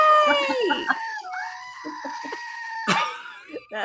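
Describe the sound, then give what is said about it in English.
A screaming goat sound effect: loud, strained wailing cries with a wavering pitch, one long scream stretching into another held yell, then a sharp shrieking burst near the end. “What is that? It's the screaming goat.”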